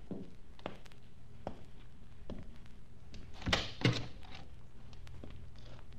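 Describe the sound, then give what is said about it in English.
A door opens and closes with two close-together thunks midway through, preceded by a few soft, spaced taps like footsteps against a quiet background. “Please close the door and come in.”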